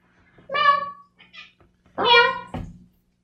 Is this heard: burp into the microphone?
no